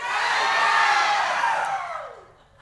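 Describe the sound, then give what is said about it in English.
A large church audience erupts in loud, sustained shouting and cheering, a dense roar of many voices that holds steady before fading out over a couple of seconds. “And roared and bellowed? Amen. And went ballistic?”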